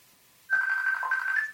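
A FaceTime call ringtone on a phone starts abruptly after a short silence and plays a bright, steady electronic melody, fairly loud, with no voices over it.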